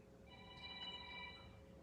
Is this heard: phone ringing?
yes